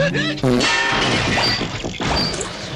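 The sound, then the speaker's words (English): A comedic crash sound effect of computer servers breaking down: a few quick electronic tones, then a loud, sustained jumble of clattering, smashing and whacking noises for a few seconds. “let's check in with the Truth Social servers. Still not sounding good. It's crashing.”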